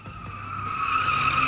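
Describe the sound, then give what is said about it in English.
A taxi skids to a stop, tires squealing in a sustained high screech that grows slightly louder over a second and a half, with a low engine rumble beneath. “Hey, taxi!”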